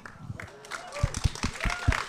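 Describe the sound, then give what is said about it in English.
Scattered audience applause with irregular bursts of clapping, moderately loud, mixed with people talking over it. “So it wasn't fun. I wouldn't applaud.”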